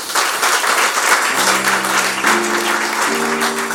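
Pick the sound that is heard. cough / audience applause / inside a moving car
audience applause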